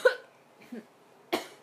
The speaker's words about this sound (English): So she's making a little bit of a croup, it's called.